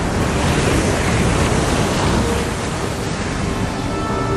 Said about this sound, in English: And then the sea rolled in.